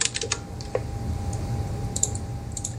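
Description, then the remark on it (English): Rapid, irregular clicks of typing on a computer keyboard, fairly clear, with small bursts of keystrokes over a low background hum and no talking. “Sorry, I only heard typing.”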